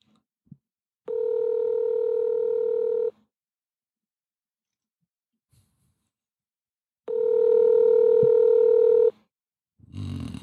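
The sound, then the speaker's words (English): An outgoing phone call rings on the line: two steady, buzzing ringback tones, each about two seconds long, separated by a long silent pause, loud, with a brief rustle at the end. “let's see if Tommy Dalton answers the phone”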